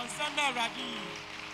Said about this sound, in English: Will you give God a better clap?